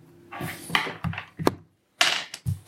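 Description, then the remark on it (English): Dice clatter and rattle in several quick bursts, with sharp clicks and tumbling taps, a brief pause, then another rattling roll that settles with a few final knocks, as dice are rolled for a mobility check. “I just want to see how many dice I'm adding here.”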